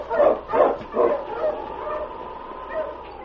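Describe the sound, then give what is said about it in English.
A sled dog team, including King and Husky, sets off on the trail. The dogs bark in a quick run of three or four sharp, loud yelps, followed by softer overlapping yips and whines that trail off under a steady background hum. “Run, King. Run, Husky.”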